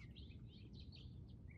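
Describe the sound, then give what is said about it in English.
Several birds chirp and tweet in quick, overlapping bursts, fairly soft, over a steady low outdoor rumble with no one speaking. “When I am outside in a place like this, I just talked to my wife before talking with all of you, and she said, you must be outside. I hear the birds.”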